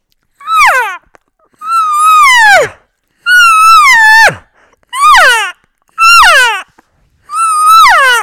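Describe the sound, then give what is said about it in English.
Six whiny, nasal elk cow calls blown on a diaphragm call, each a loud mew that slides downward in pitch, spaced in an uneven rhythm with short silences and no talking. “yeah, I really like that whiny sound. I throw that in there all the time when I'm hunting”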